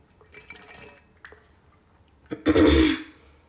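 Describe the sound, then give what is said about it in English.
A quick slurp of the last tiny bit of water in a water bottle, a short wet gulp and a rush of air lasting about half a second, preceded by faint plastic handling and light clicks. “Is there water in this? Oh my God, there's, like, a tiny bit of water.”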